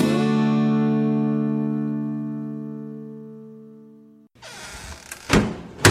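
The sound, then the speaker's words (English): A long sustained musical tone fades out, then a shed door is pulled closed with a scraping rattle and a couple of sharp thuds as it shuts. “We've pulled the door closed on this episode of The Shed Wireless”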